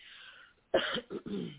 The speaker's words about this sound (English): I still have a little cough, and I still get a little winded.